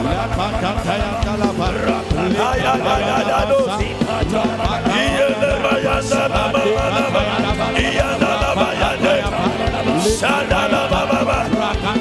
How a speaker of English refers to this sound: Clap your hands and pray for 2 minutes.